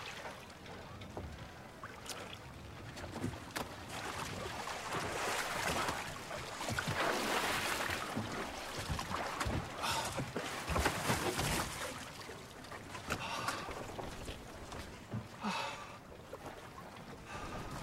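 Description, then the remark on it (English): Wooden knocks and shuffling as someone clambers into another person's rowboat to go fishing, with water sloshing against the hull and a breezy outdoor hiss throughout, moderately loud. “You can't just climb into my boat.”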